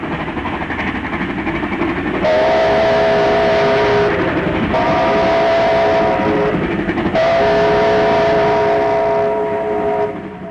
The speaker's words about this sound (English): The 3801 has been immortalised in a delightful short film called A Steam Train Passes, which you can find on the National Film and Sound Archive of Australia website.